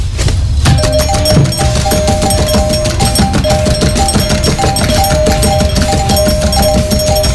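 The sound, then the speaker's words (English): A doorbell rings over and over in quick, relentless succession in the middle of the night, its bright metallic tone repeating loudly for several seconds with no pause and no voices. “What the hell are you doing ringing our doorbell like that in the middle of the night?”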